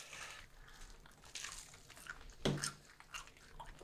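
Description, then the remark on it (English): Wet, crunchy biting and chewing on a sauced hot chicken wing, with irregular smacking and squishing bursts and one louder crunch midway, no talking. “I'll make it a huge mess because I've got so much sauce on mine. You can't unbite this.”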